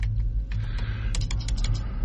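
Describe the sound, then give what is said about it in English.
Rapid, irregular clicking of keys on a computer keyboard as someone types a search for Black Friday, fairly clear, with a low steady hum underneath and no voices. “I'm typing it for her.”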